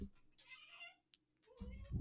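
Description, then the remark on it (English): A female cat lets out a single drawn-out meow, followed by a brief click and then low murmuring voices toward the end. “until kind of the cat's here to add her two cents towards the end.”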